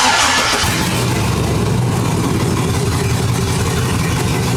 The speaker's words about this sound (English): it's definitely gas. Mm-hmm. Definitely V8. Right. And that's all I got. It's an LS in what? Go-kart. Nope, 1979 Rolls-Royce Wraith 2.